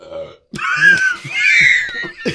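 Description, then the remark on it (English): A loud, drawn-out burp, rough and gravelly, rumbling on for nearly two seconds after a brief vocal sound, with no talking over it. “This is a horrible time to burp.”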